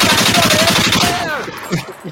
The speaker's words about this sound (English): That was a Kalashnikov? Or AK?